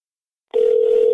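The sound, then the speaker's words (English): After about half a second of silence, a steady, loud telephone tone starts abruptly and holds unbroken to the end, like a call ringing through on the line. No voices. “That's how everybody answers the phone when I call.”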